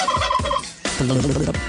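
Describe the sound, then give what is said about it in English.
A turkey gobbles in two loud bursts, each a rapid, warbling rattle of throaty notes with a brief gap between them and no talking. “Real gobbler.”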